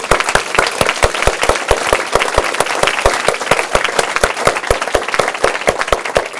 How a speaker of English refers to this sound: And actually, let's take a moment, the adults, and give the adolescents in the room an applause. Thank you for being here.